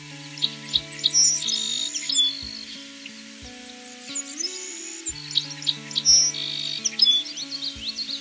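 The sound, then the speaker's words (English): A Savannah sparrow and a song sparrow sing together outdoors at a park in Greensville, the Savannah sparrow's thin, high buzzy trills and the song sparrow's sweet chirping phrases repeating over a steady low background hum. “Here at Johnson 2 Park in Greensville, I've managed to record the two species together.”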